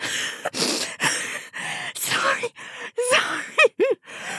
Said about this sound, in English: She gasped. Her eyes were watering from the pressure of the laughter trying to force its way out of any available orifice.